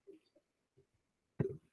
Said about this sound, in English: I got the hiccups now.